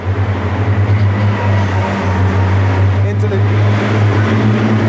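Baggage tugs pulling carts rumble through one of two 7,000-foot underground tunnels under the DIA airport, where airlines move luggage from plane to plane to baggage claim; a loud, steady low engine drone with a constant hum and faint rattling layered on top, continuing without a break.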